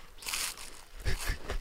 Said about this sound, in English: Let's hear this chewing more. Yeah. Turn this up.